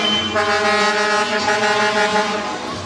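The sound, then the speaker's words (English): A huge Smith Excavating truck rolls past in a parade, a loud, sustained deep blaring tone lasting a couple of seconds over heavy engine rumble and outdoor noise. “That's a serious piece of machinery right there. Ooh-ee. That's the biggest truck you've ever seen in your life.”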